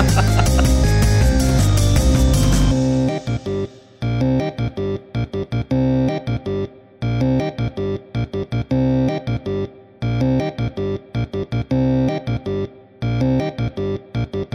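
Loud electronic outro theme music with no talking: a dense, full burst for about three seconds, then a choppy, stuttering beat cut by abrupt short gaps.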